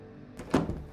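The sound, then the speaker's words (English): A door opens as Agravain squeezes through it: a single dull, hollow thunk, preceded by a soft scrape and followed by faint rustling, with no voices. “Agravain squeezes through the door.”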